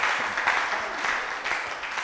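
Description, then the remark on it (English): A crowd claps steadily, a dense wash of overlapping hand claps at a fairly even, moderate loudness for about two seconds, with no voices standing out. “And why don't you clap for Peter also?”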